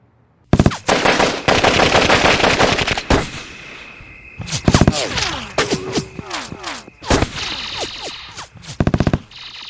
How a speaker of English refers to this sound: It was raining again in Hollywood. Only this time the rain was made of pure lead. Metal. Bullets. A rain of bullets was headed my way as I camped out underneath the Hollywood sign.